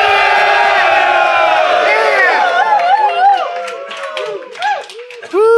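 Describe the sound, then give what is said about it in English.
A live crowd in New York City at a .NET Rocks show cheers and whoops loudly, many voices blending into a sustained roar that breaks into scattered rising and falling woos before fading out quickly. “They ran out of steam pretty fast. Yeah. They must be getting late in New York. It's not a sustained woo.”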